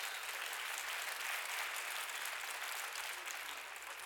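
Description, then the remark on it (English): A large church audience claps steadily in a dense, sustained wash of applause that holds at an even level from start to finish, with no voices breaking through. “You can clap.”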